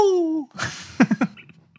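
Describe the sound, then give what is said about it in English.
A person vocally imitates a pigeon, starting with a sustained, slightly falling tone, then a pause and three quick, throaty coos in a row, fairly loud. “It's like a really confident pigeon.”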